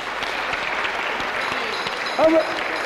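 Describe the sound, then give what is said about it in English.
An audience claps hands in praise of God, a steady, dense patter of many overlapping claps at moderate loudness, with a brief vocal sound rising above it near the end. “Come on, clap.”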